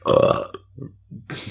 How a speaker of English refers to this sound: I'm just trying to burp.